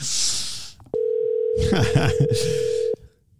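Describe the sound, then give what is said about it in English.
A steady electronic telephone ringback tone of an outgoing call holds for about two seconds, with people talking over it and a burst of noise before it starts. “Tell her that's not a spam phone call.”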